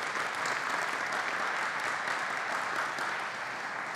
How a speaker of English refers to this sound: Come on, in Jesus' name, and everybody said together, amen. Come on, clap for that. It's good.